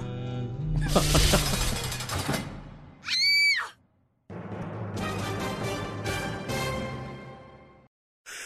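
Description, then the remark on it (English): A woman lets out one short, piercing scream in the middle of loud, chaotic crashing and clattering, with a dense wash of noise continuing after it. “and I really want to know who's screaming there.”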